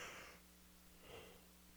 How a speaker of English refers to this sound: Sorry, I was yawning.